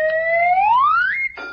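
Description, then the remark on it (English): A loud tone sweeps steadily upward in pitch for over a second, then a bright clanging bell rings out at the top once a hammer hits a big red button. No one speaks. “He rang the bell again.”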